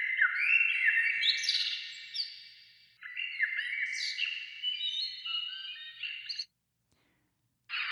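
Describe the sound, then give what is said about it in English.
Bright, high bird chirps and whistling calls pour out in two busy bursts, fairly loud, then cut off into silence near the end with a brief chirp returning. “He calls to his friends again, putting out a call for help.”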